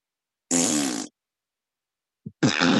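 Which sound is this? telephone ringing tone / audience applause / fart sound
fart sound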